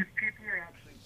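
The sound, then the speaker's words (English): A thin, band-limited phone voice breaks up in short choppy bursts, cutting in and out with brief gaps of near silence over about a second. “Your phone's a little sketchy, …. Can you hear me now?”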